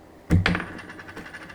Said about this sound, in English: So I'm going to pull out a coin real quick. I'm going to flip a coin. Coins. I got coins. There we go. It's a quarter.